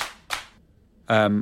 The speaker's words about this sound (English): I'm going to clap my hands 3 times.